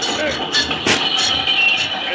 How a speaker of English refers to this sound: Throwing the clutch of the engine so it would jerk the cars and knock Cisco down was sheer genius.